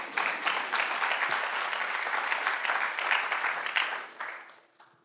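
An audience bursts into sustained applause, a dense wash of many hands clapping at steady volume for several seconds before thinning out and fading away.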